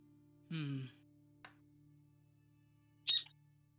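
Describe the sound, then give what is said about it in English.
A pet bird squawks twice indoors: a harsh, buzzy call, a tiny click, then a sharper, shriller squawk a few seconds later, with a steady low electrical hum underneath and no talking. “That's good input from the bird.”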